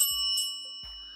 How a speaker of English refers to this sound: Ring that bell.